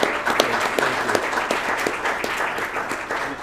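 A sustained round of applause from a group for an interviewer, for managing his interviews, dense overlapping claps forming a steady crackling wash with sharper individual claps popping out, holding at an even loudness throughout.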